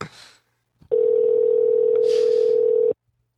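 A single steady ringback tone of an outgoing phone call to Don Fry sounds loudly for about two seconds, a flat mid-pitched hum, preceded by a brief rustle and a faint click.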